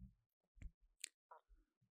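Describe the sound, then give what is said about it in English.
Mouth noises of someone sipping an alcoholic drink: a few soft wet slurps and a swallow, with small clicks and low thumps, and no talking. “I'm taking one more sip here.”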